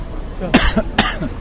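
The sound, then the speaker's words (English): Two quick, harsh coughs in close succession, each a sharp burst of breath with a rough voiced tail, fairly loud, with no talking around them. “Sorry, I keep coughing.”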